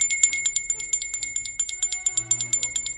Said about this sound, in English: That bell means we're halfway through the show, everybody.